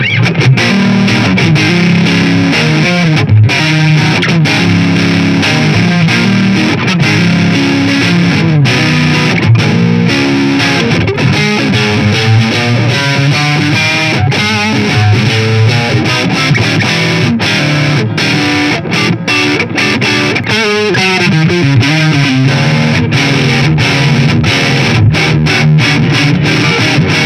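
A distorted electric guitar plays continuously with a warm, thick tone from the neck pickup alone, going through Squier circuitry, mixing sustained chords and melodic runs at a loud, steady level with no one speaking.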